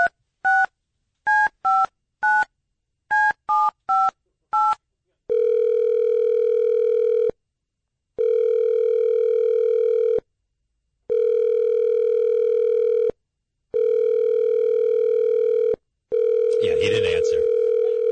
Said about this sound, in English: So let me call him. So I get on the phone and I call him.